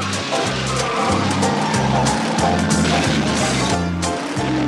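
Racing cars speed past in the illegal race of the film The Gumball Rally, from Times Square to the Pacific Ocean, a loud, continuous roar with hints of squealing tires, all over a stepping, rhythmic bass line that runs steadily underneath for the whole stretch.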